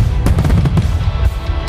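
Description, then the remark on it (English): Fireworks going off on the 4th of July, with a quick burst of sharp crackling pops in the first half over a steady, loud low rumble that carries through to the end. No one speaks. “Unless the fireworks off.”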